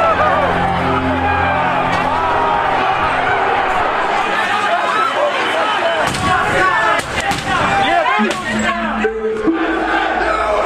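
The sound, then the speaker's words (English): A crowd of Trump supporters protesting at the Capitol shouts and roars continuously while a series of sharp, loud smashing impacts breaks through in the second half as protesters break glass amid the clamor. “This is them breaking the glass.”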